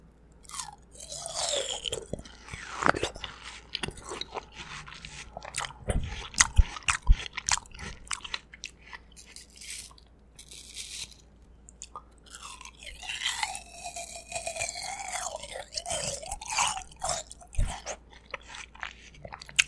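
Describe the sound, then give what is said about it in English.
Loud crunchy bites and wet chewing of watermelon for an ASMR watermelon challenge, with juicy squishing and repeated crisp crunches spread across the whole stretch, no talking. “Here's an audio clip of … doing ASMR. Welcome to … ASMR Watermelon Challenge.”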